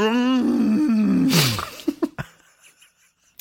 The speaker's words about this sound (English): And then it's... like a deer grunt / roar, so it's like, Grazer, it's a jungle out there.